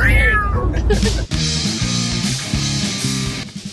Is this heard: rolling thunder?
no